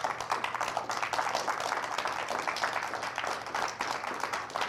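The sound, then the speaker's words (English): Dense, continuous clapping from a large church audience during worship, clapping to show their love for Jesus, steady and fairly loud for the whole stretch, with a low hum underneath and no voices standing out. “Come on, clap your hands if you love him.”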